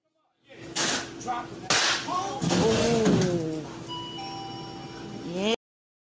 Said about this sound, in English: Do you hear the doorbell in the background?